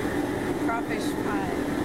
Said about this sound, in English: what is that the sound of? That's a propane tank. Ooh, yuck. What is that propane tank doing? Heating the pot. What pot?